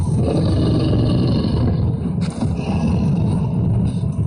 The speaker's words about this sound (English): Oh, here we are, red dragon roars. Let's get chased by a dragon!